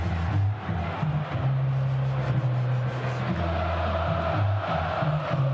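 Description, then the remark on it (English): A large stadium crowd of Mountaineer fans roars steadily for several seconds at a football game against the Sooners, wanting a defensive stop: a dense, loud wash of cheering with a low droning undertone and no clear voices standing out. “Mountaineer crowd as desperate for a stop as you Sooner fans are listening.”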